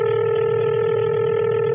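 A telephone line tone hums steadily and evenly for a couple of seconds, fairly loud, with no voices, as the radio station Magic 105.3 places a call to a listener's neighbor.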